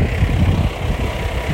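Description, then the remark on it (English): A heavy dump truck driven by a woman rumbles past, its deep, steady engine drone filling the low end with a broad roar that swells slightly and then holds even. No one speaks. “I'm passing by a dump truck here.”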